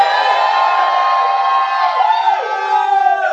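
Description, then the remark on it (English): A church audience of many voices shouts and cheers together for the Lord in a loud, sustained roar, with higher whoops rising and falling through it for several seconds. “Give the Lord a shout if you like my message.”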